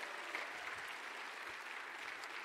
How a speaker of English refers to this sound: So one more time, give it up for our young adults that are going off to college, right?